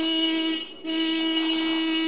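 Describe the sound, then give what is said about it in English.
A car horn honks twice as the driver passes his house in his neighborhood, a loud, steady, buzzing tone held for most of a second, a brief break, then a longer sustained blast at the same mid pitch. “I always honk the horn when I'm in the neighborhood.”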